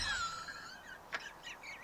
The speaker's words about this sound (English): What the? What is that? Loser bird. Loser bird. Loser bird. Loser bird.